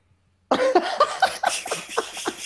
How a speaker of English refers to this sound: Who is breathing that heavy?